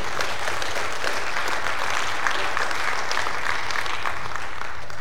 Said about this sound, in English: So let's applaud ourselves. Yeah.